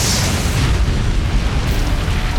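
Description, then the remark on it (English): A deep, sustained rumble of thunder from the clouds overhead, loud and steady throughout with heavy low-end energy and a rolling texture, no voices present. “The priest was cut off by a deep boom of thunder from the clouds overhead.”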